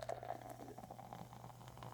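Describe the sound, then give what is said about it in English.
Beer pours from a metal can in a steady, fizzy gurgle, a continuous splashing stream with crackling foam forming a head, fairly quiet, with no one talking. “Let's get a pour and see what kind of head she's got on her.”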